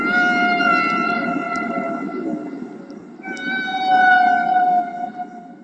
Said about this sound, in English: And then, leaning forward and putting the headphones on my head, he said, "I think these are humpback whales," and shouting to be heard over the roar of this thing. And what I heard completely blew my mind.